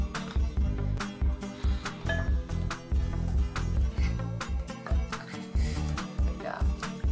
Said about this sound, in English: Step three, we're gonna stir it with a big spoon.